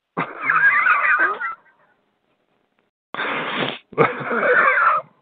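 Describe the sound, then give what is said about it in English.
Heavy, rasping wheezy breaths of a man, loud: a long strained inhale, a pause, then two more labored breaths in quick succession, with no talking. “Look at him breathing heavy as hell, man.”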